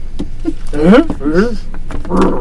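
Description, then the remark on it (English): A person's voice imitates a lion's roar in a few loud, growling bursts, each rough and throaty with a wavering pitch, the last one lower and more breathy. “Giant, horrible lion.”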